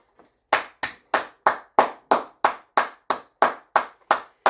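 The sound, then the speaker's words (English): A single person claps their hands about a dozen times in a steady, even rhythm, each clap sharp and loud, with no talking over it. “You may want to know why I'm clapping.”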